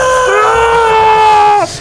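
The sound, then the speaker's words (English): A voice imitates the shrill, high-pitched tone of a garden badger deterrent device, holding one steady, piercing note for about a second and a half before it dips and cuts off. “It plays this note that humans can't hear, but it terrifies badgers."”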